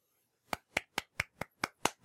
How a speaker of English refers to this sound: Golf clap.